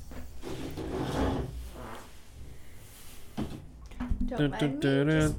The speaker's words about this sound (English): Dude, every time you move in that chair, it sounds like a fucking fart. Dude, it's bad. And this, it's just like. Dude, okay, so to be honest, that's why I haven't moved much. But like whenever I do, I'm like, it sounds like I just ripped my asshole.